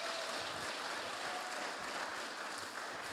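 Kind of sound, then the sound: crowd, audience applause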